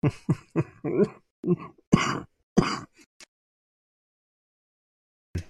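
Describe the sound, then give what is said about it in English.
A person with chest congestion coughs a series of rough, congested coughs in quick succession, fairly loud, with a couple of heavier hacking bursts before trailing off into silence, then one brief sound at the end. “It's more in my chest than anything, so I apologize for the cough here.”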